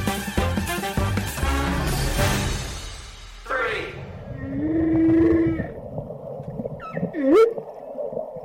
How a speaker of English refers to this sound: The sound of humpback whales singing. The noises may sound random, but the grunts and howls you hear are actually working in a sequence, and the same complex sequences are being passed around the whale groups from region to region.